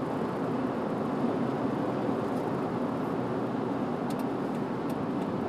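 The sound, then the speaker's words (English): Steady, dense road rumble from a car moving along a busy freeway, a constant low roar of tires and traffic with no speech, holding even in loudness throughout. “Wow, there's a lot of people just coming onto the freeway.”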